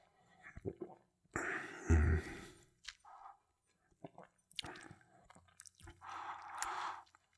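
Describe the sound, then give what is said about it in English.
Quiet sipping of añejo (aged) tequila with wet slurps, mouth smacks and swallowing sounds, coming in several short bursts with brief pauses between them. “And then, of course, it tastes like tequila, but let's go for another sip here.”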